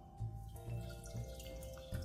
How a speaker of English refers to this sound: And turning it off the heat. And so we're going to pour it into a bowl, a large mixing bowl.